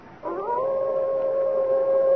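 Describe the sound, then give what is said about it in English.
A single long, sustained howl of a white wolf among trees rises sharply and then holds a steady, mournful pitch, clear with no voices over it. “There, Father. Through the trees. The white wolf.”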